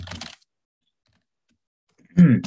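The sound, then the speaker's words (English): Computer keyboard typing comes in two short bursts of clattering keystrokes separated by nearly two seconds of silence. “Excuse my keyboard tapping.”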